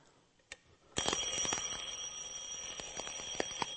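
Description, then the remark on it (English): An old-fashioned mechanical alarm clock bell bursts into a loud, continuous metallic ringing after a brief click, clattering steadily with bright overtones and occasional sharper strikes, heard alone. “The good old-fashioned alarm clock.”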